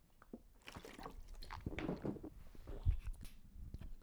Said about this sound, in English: Sip of water.